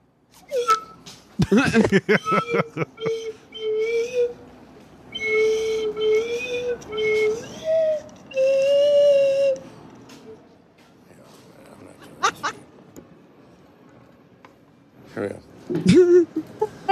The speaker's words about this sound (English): He doesn't know how to use a slide whistle. What is that? Monkey chew toy. It's his own chew toy.